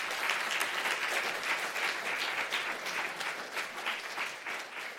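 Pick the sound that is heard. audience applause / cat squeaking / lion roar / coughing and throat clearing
audience applause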